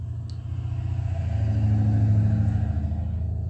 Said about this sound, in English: It's another truck. It's not, like I said, it's not a sea urchin episode without a loud truck in the background. So I'm sorry about that, but that's what I get for living right by the road.